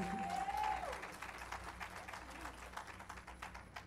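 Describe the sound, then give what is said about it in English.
Audience applause as a speaker announces a lesson series called the Better Me Summer Series, a dense, steady patter of many hands clapping throughout, loudest in the first second and then holding even. A brief high whistle-like tone rises and fades near the start. “Yeah, if you're going to clap, clap.”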